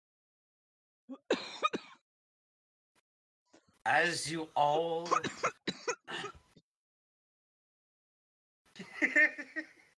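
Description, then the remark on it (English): Loud throat clearing and coughing come in separate bursts with quiet gaps between them. A stretch of raspy, voiced clearing sits in the middle, and a few words are spoken briefly. “A little bit of water coming out my nose from where I cough.”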